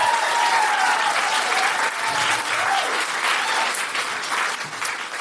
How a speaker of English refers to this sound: And now, please put your hands together, start clapping, start cheering, go wild for the very funny Deborah Frances Wood!